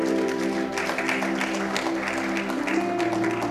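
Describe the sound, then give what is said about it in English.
A crowd claps their hands for the Lord steadily, a dense, continuous patter of many hands over sustained keyboard or organ tones, loud throughout the few seconds with no pause. “Give the Lord a good clap of hands.”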